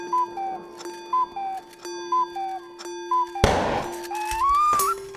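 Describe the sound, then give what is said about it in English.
A clock ticks steadily, about once a second, each tick paired with a short tonal chirp over a low hum, until a sudden noisy burst and a rising whistle cut in. No voices. “It's a bomb!”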